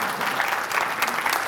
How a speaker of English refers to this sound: Give them a round of applause if you would as they come up.